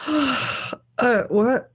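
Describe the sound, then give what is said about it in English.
A loud, drawn-out, deliberate yawn, a long breathy groan followed by a short pause and two more wavering, stretched vocal bursts. “yawns very, very loudly and intentionally.”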